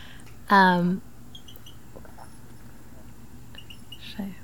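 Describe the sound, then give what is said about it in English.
A single loud, harsh bird call cuts through quiet night air, followed by a few faint, distant chirps against a low steady background hum. “There's this really nice bird sound over here.”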